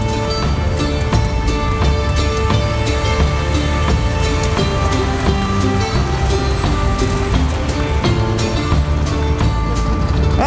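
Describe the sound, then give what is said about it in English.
Steady, loud rumble of a truck on the move, heard from the back where passengers ride out to see buffalo, with a dense roar of road and engine noise and frequent sharp rattles and knocks throughout. “But yes, we're in the back of the truck.”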